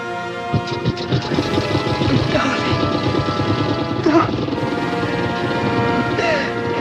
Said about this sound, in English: This is a very big, chilling and foreboding effect. This is the whole orchestra, pretty loud, with orchestral bells, gong, gong, fate is coming for you. It feels operatic